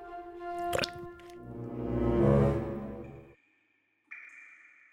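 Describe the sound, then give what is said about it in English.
A thick, gooey drip of slimy drool from the huge fangs of a saber-toothed tiger cub stretches out with a wet squelch, swelling louder before cutting off, then a brief bright tone follows. No one speaks. “An enormous slimy drool drips from the massive fangs right onto Abba's head.”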